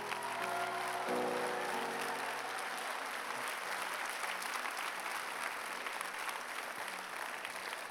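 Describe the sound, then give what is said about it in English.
An audience breaks into loud, sustained applause as a woman runs to the front, dense rapid clapping filling the whole stretch with a few faint voices underneath at the start. “Give her a clap as she runs.”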